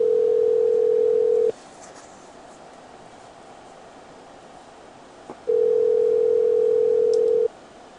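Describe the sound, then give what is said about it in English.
A steady, low-pitched telephone dial tone sounds loudly for about a second and a half, stops for several seconds of quiet line hiss, then returns for another two seconds. No keypad beeps or voices are heard. “I'll hit the dial pad.”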